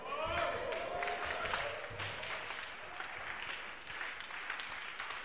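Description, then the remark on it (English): An audience erupts in a loud, sustained victory shout and clapping for the Lord at the close of a sermon, with dense applause and raised voices cheering together throughout, steady in volume from start to finish. “Give the Lord a victory shout, and a clap.”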